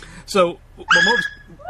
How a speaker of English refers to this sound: Oh, hi, Doug. we just have a nice visit here from the puppy in the background.